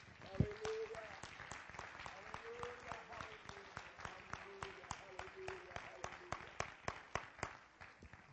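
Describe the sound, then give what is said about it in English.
A church audience applauds as a hand clap of praise to the Lord, a steady wash of clapping with some sharper individual claps standing out, while a voice calls out over it in the background. “And as you're seated, would you give the Lord a hand clap of praise one more time?”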